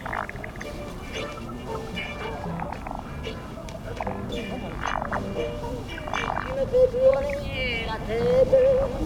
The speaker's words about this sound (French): Après, au ras des pâquerettes, c'est la grenouille.